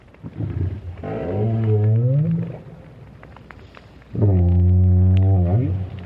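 A lone adult southern right whale calls underwater in the Southern Hemisphere, recorded by Roger Payne with a hydrophone placed at the bottom, in two long, low tonal moans with rich harmonics, the second louder and steadier, separated by a quieter stretch of murky underwater noise.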